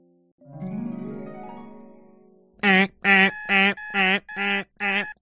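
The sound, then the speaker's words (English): A shimmering, chime-like tone fades out, then Alabaster Zero's alarm clock goes off at 4:30 a.m. in six loud, evenly spaced, insistent electronic bursts, with no talking. “It was 4:30 a.m. and Alabaster Zero's alarm clock was going off at the start of a brand new day.”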